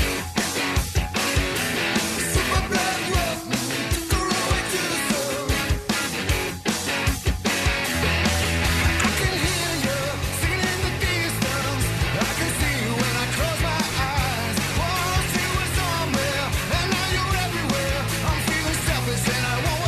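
A loud, dense stretch of a rock song plays without pause, with driving drums, thick distorted-sounding instruments and a steady full-band wash throughout; no one talks over it.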